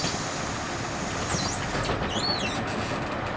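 The air brakes of a 7 p.m. airport shuttle bus squeal in high, wavering whines that dip and rise over a steady engine rumble, with no voices.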